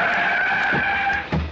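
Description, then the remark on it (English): A car skids to a stop on a street with a loud, sustained tire screech lasting over a second, ending in a low thump as it halts. Alone, with no talking. “I went sprawling into the street in front of an oncoming car.”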